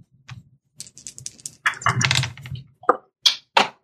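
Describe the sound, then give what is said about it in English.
Dice dropped beneath a desk clatter and tumble onto a hard surface below, a burst of sharp, irregular clicks and rattles, bouncing a few times before settling, with no talking. “I dropped my dice between, like, beneath my desk.”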